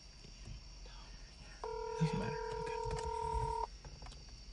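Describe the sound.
A phone on speakerphone plays a steady electronic dialing tone for about two seconds, clear and fairly loud over a low background hum, with faint murmurs of people.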